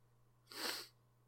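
A single sharp sneeze bursts out, a bright, hissy blast lasting under half a second, heard alone over a low steady hum with no talking.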